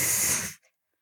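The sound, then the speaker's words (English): A voice imitates the greenback, a cockroach, hissing as a centipede bites it: one sharp, breathy hiss lasting about half a second, followed by a faint short puff and then silence. “And the greenback hisses.”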